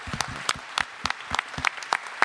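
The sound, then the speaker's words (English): An audience applauds a first-year teacher, a steady patter of many hands clapping at once with sharp, irregular claps rising above a dense crackle, sustained at moderate loudness with no voices. “She and I are both first year teachers, and she works really hard, and it would mean a lot to her if you could give her a hand.”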